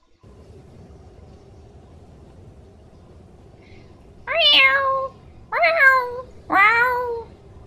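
Three loud, drawn-out cat meows with a rising-then-falling pitch, spaced about a second apart, over a steady low rumbling background; the cries of a pet cat amid a thunderous, icy storm.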